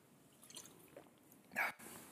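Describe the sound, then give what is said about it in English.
Quiet sounds of someone taking a drink of water: faint small liquid drips and shuffles, then one short, louder gulp or splash near the end before it settles again. “Let's get some water.”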